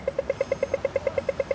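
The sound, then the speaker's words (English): An audio tactile pedestrian crossing button signal: a rapid, evenly spaced train of mid-pitched electronic ticks, around fourteen in quick succession with a steady rhythm, with faint traffic rumble underneath and no talking. “So next time you're waiting at a crossing, scrolling your phone, it'll be this sound that gets you moving.”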